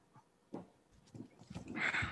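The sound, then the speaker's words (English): A dog named Miles gnaws on a bone, with irregular wet crunches and clicks that build toward a louder, scraping burst at the end. No one speaks. “That's actually no, Miles chewing the bone.”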